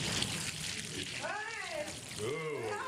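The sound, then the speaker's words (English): Water is poured steadily from a bucket over a person's head in a waterboarding demonstration, a continuous splashing rush for about four seconds, with the person's strained vocal sounds rising and falling over the stream partway through. “Water going.”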